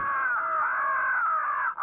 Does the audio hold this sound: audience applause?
no